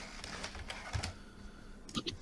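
Keys clack on a computer keyboard in quick, uneven bursts, a steady run of crisp taps followed by a brief pause and a final flurry, with no one speaking.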